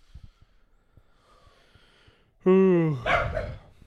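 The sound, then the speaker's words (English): After a quiet stretch with faint thumps, a dog lets out one loud, drawn-out bark that slides down in pitch and ends in a rough, noisy burst. “Such dumb dogs.”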